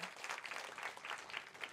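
A crowd applauds steadily, dense overlapping claps forming a continuous wash of sound that stays fairly even, heard from a moderate distance without voices.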